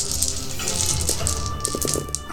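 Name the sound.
rolling ten-sided dice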